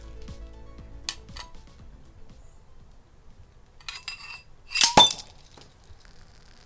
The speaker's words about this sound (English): This, of course, is sabering, the art of opening a bottle of champagne without popping the cork, using only a blade.